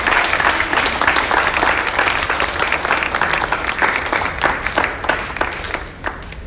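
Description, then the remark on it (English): A church audience claps hands to worship God after a prayer, a loud, dense wash of applause, many overlapping claps sustained steadily, easing slightly near the end with a few sharper claps standing out. “Let's clap our hands, you guys.”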